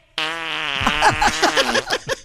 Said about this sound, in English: Chick McGee, here he is with his fart of the day.